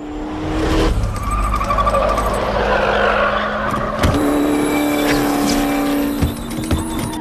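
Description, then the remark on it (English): A race car's engine roars loudly while tires squeal and skid at length as the car suffers brake fade, going too fast with brakes that no longer hold, with sharp tonal screeching and a sudden jolt partway through, no voices present. “It's called brake fade. When you're going too fast and your brakes no longer hold.”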